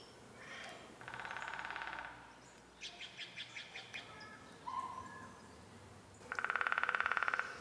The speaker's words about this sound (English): It is, in fact, a woodpecker. A woodpecker. Joyful noise from a woodpecker.